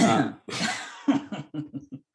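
Two harsh, loud coughs, followed by a short run of softer, voiced hacking bursts that trail off, with no one talking.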